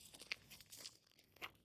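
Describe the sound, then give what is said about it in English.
Footsteps crunch on tiny rocks during an afternoon walk with Miss Reagan, at a steady walking pace, about three soft, gritty steps over a quiet background, low in volume. “You hear the crunch crunch”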